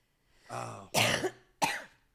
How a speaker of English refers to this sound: Oh, I'm still coughing.